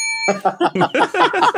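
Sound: bell ringing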